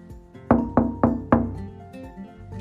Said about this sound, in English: Or it was kind of like a knock at the door.